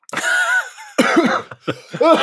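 A loud fit of coughing: about four harsh, throaty coughs in quick, uneven succession with brief pauses between them, and no talking.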